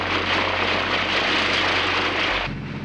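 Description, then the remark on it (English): A propeller plane drones loudly and steadily overhead, its engine roar mixed with a low throbbing hum that shifts slightly in pitch near the end. No voices are heard. “Both police helicopters and private planes flew over the area with hopes of finding a clue.”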